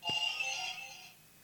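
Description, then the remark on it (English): One of a set of quiz buzzers, each with its own sound, sounds once: a sharp click starts a bright, ringing electronic tone that holds steady for about a second before fading out, with no talking over it. “I'm going to say everyone has a different sound for their buzzer.”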